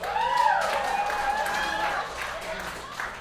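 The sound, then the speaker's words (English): An audience cheers and claps for about three seconds, with high whooping voices riding over a steady wash of applause that fades slightly toward the end. “Real simple, like, who thinks she should just fucking go for it? Round of applause.”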